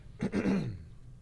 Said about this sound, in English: I feel like you're clearing your throat. Seriously.